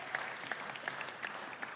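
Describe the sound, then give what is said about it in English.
An audience applauds steadily at the start of a talk, a dense wash of many hands clapping with a few sharper individual claps standing out, at moderate volume and with no voices over it. “It's always nervous when they start with a round of applause.”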